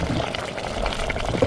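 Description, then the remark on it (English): A steady, dense hiss and bubbling of water as smoldering lava, scooped from the edge of a lava field, is doused in water and flash-cooled into glass, sizzling continuously for the whole moment with no talking. “Marshall scoops up the smoldering lava and douses it in water.”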